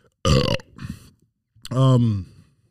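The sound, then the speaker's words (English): Two loud, close-up burps: a short, harsh one first, then after a pause a longer, deep, drawn-out belch with a rumbling, voiced tone, recorded right up against the microphone. “I make sure, and by the way, if you're new to the show, I make sure I burp into the mic.”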